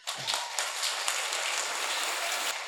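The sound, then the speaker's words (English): An audience breaks into steady applause, a dense crackle of many hands clapping at once that holds an even level throughout, with no voices over it. “You can clap.”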